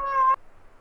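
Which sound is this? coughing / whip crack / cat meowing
cat meowing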